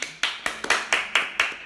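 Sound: hands clapping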